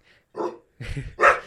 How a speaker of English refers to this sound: There's a dog in the studio! What's going on?